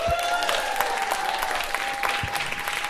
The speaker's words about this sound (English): If you would please put your hands together and give a round of applause and welcome to the stage of Probably Science, Mr. Matt Kirshen and Mr. Andy Wood.